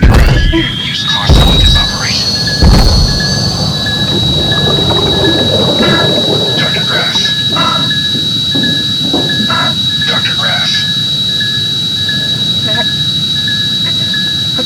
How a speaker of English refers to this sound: Give me the torch or the saw! Activating your suit's metal saw.